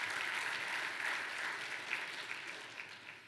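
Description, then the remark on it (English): An audience claps to the Lord after a prayer, in a dense, steady wash of many overlapping hand claps, sustained throughout and tapering slightly toward the end, with no voices standing out. “You can clap to the Lord and be seated.”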